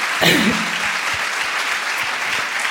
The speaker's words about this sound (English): Thank you guys so much for sharing. Can you guys clap it for them, please?